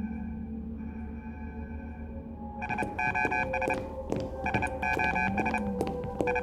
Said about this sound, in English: Do you hear that? That beeping? It's coming from the TARDIS.